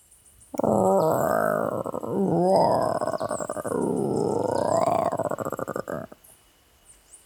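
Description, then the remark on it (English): A human voice practicing dinosaur roars, delivering long, loud, growling bellows that rise and fall over several seconds, with no other sounds around it. “Just practicing my roars. You're a bird, not a lion. Duh. Don't you know a dinosaur roar from a lion roar?”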